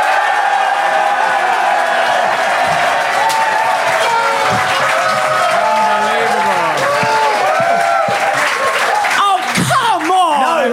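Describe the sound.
Sustained, loud audience applause given as a vote on which side is in the right, a dense wash of clapping that holds steady throughout, with cheers and shouting voices mixed into the crowd noise.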